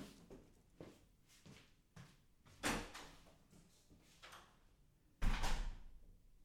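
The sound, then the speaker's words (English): A door being opened and shut, with a few light clicks and knocks building to two heavier thuds spaced a few seconds apart, with no voices. “It's door on your right.”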